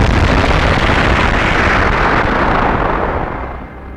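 A loud explosive burst of energy that bathes a car in light, turning into a dense, continuous roar and rumble for several seconds before easing off slightly at the end; no voices are heard.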